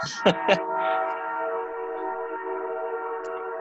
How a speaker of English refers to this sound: Sam got a train by his house.